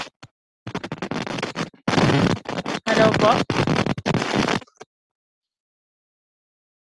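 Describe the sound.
Food frying in a pan gives off a loud, crackling sizzle that runs steadily for about four seconds with a few brief dropouts, while a voice briefly speaks at the start.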